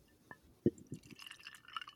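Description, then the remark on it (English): Sazerac rye whiskey being poured from a bottle into a glass: a few soft knocks and glugs, then a brief, bright trickling splash, quiet with no one speaking. “So you guys get the pop and the pour if you want to listen to the pour as well.”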